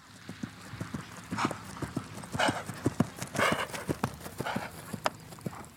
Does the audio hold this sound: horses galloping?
yes